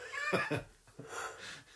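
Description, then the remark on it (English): A person yawns, a breathy, drawn-out exhale with a wavering, slightly whimpering voiced tone that rises and fades over under two seconds, with no talking. “Oh, God, I'm yawning.”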